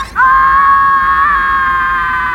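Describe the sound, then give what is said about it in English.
A loud, high-pitched scream like a wailing baby, rising sharply at the start and then holding one long, steady cry with only a slight waver in pitch. “The last thing I remember is Dex screaming like a baby. It sounded like this.”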